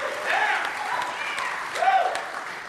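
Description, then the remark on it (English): A live studio audience at Soma Church and Day Spa applauds in a steady wash of clapping, with whoops and cheering voices rising over it and swelling briefly near the end. “So let's clap it up for our live audience.”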